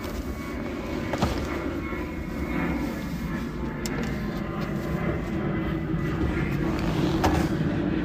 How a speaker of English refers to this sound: There's a plane flying overhead. I'm gonna wait for it to go off.